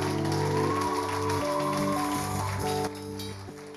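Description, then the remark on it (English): An audience claps steadily in a dense, rain-like wash of applause over sustained organ chords, holding loud for a few seconds before easing off slightly near the end. “Are you sure you were clapping or you were learning how to clap?”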